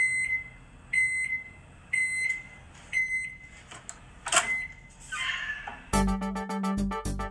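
A microwave oven beeps in a steady series of short, clear electronic tones about a second apart, followed by a brief clatter and a loud rhythmic burst at the end.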